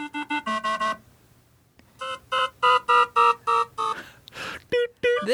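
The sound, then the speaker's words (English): A cardiovascular caution alarm, or emergency alarm, sounds: loud, buzzy electronic tones pulsing in a quick burst, a brief pause, then a steady run of evenly spaced beeps, with a short rush of noise near the end. “This sound that you're hearing is a cardiovascular caution alarm or an emergency alarm.”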